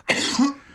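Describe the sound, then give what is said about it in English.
A single wet, phlegmy cough bursts out, rough and throaty, then trails off before a short second burst begins at the very end. “Thank God it's a wet cough.”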